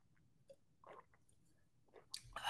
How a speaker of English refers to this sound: Give me 1 second, guys and gals. I need to drink my alkaline water. Give me 1 sec.